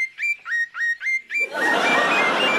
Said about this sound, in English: It was a glorious day. The sky was blue. The sun was out. The birds were singing.